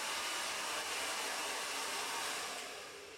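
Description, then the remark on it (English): A hair dryer blows steadily in a continuous, airy whoosh, fairly loud, holding constant before easing off slightly at the very end. No voices are heard. “He could hear the blow dryer and knew I wouldn't hear his knock.”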